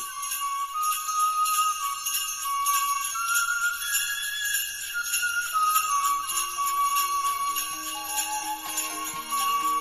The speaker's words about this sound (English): It's not really playing very loud, though, at the moment. Oh, there it is. Some bells. Yeah, good.